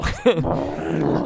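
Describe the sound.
A man's voice imitates a lion's roar, mimicking the sound made when punches are thrown in the Rocky movie, with one short, gravelly growl that swells and then trails off, loud.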